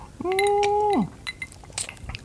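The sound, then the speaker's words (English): Light glass clinks in a birthday toast, scattered over a couple of seconds. A drawn-out hummed vocal tone sounds at the start, then several small, bright taps and a brief ringing chime. “So thanks for that, man. Cheers. Cheers, man.”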